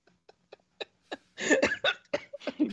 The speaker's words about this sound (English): Oh, sorry, that gave me the hiccups.